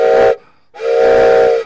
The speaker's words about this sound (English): And now, for this wonderful train whistle, we love to kick off Americana Central Time with.